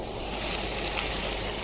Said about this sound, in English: So I have the pan on. Again, the usual rule of thumb, just making sure you can keep your hand over about an inch from the surface for only a split second. You want to hear a little bit of a sizzle. Do we hear it? Just placing the fish on gently.